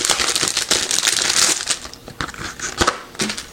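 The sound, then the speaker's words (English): Plastic packaging of a dog-shaped sleep mask with lights and music crinkles and crackles as it is opened, a steady run of crisp, bright rustling with sharper snaps and crunches scattered throughout, without any talking. “So let's open this up first of all, see what's inside, and see if it is actually a functional sleep mask.”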